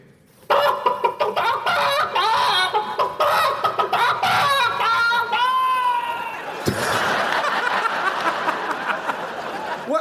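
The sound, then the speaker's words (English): A sound effect from a BBC archive of a distressed chicken clucking frantically for nearly ten seconds, squawking in agitated, rapid bursts, with a sharp knock partway through before the flustered clucking continues over rustling noise. “And so here's indisposed chicken.”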